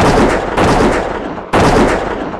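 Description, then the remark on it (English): Three loud gunshots at uneven intervals, each a sharp, full-bodied bang that trails off in a lingering, rumbling decay before the next one. No voices are heard. “Stop or I will shoot! I'm okay. He missed.”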